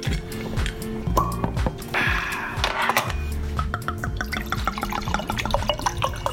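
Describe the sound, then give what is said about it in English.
Wine glugs and splashes as it is poured into glasses, the pitch rising as each fills, with a few drips and faint clinks between pours. “Just open some wine, then we'll start this podcast, yeah?”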